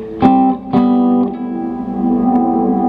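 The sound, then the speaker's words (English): Two plucked guitar notes ring out through a guitar pedal's reverb set to 80s mode with the decay turned all the way up, hanging on as a dense, washy reverb tail that never fades, sustaining at steady volume like an endless drone. No one speaks. “Like if you turn it to 80s mode and you turn up the decay all the way, you have like infinite reverb.”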